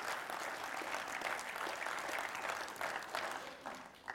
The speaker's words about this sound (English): Thank you for that overwhelming cheer and response.